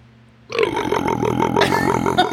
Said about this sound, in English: All right, I'll do it. There's the Walrus burp. Walrus is back.